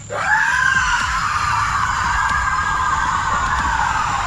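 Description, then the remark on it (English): A monstrous, metallic-edged scream from a metal-faced creature erupts in a forest and holds for several seconds, loud, a harsh sustained shriek with a rumbling, noisy undertone and no speech. “I just barely managed to stoke my power when the eyes and mouth opened, loosing a scream that shook the forest.”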